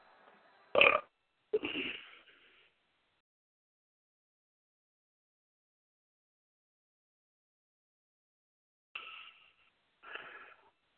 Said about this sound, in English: Sorry, I had to. Belch now, belch now.